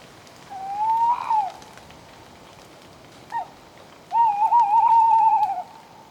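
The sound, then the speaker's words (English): A tawny owl (Strix aluco) hoots on a dark, stormy night in France against steady rain: one drawn-out hoot, a short pause and a brief note, then a long wavering, quavering call, all clear over the hiss of the downpour. “Here is a tawny owl, Strix aluco. It's calling during a dark and stormy night in France.”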